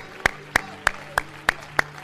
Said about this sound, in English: Everybody clap your hands and let's give up some praise to Jesus.